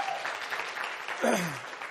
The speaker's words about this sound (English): Last week we have, you can clap for her, I think that's fine.